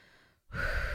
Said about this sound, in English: So imagine, you know, close your eyes, start with the breathing.